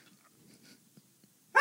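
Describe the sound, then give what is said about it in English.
A dog barks once, loud, right at the very end after a stretch of near silence with faint, soft rustling sounds. “If you look directly behind you, you'll see a dog that's barking.”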